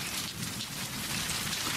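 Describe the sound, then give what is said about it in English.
Steady rain falling, a dense, continuous hiss of drops with a soft low rumble underneath, even in loudness throughout with no voices. “Oh, good, my bougainvillea needs this.”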